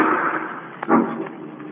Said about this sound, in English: Margot and Lamont are in the home of the wealthy actor Hugo Zara, owner of the fabulous Ruby of Carval, when suddenly from upstairs they hear the sound of a gunshot.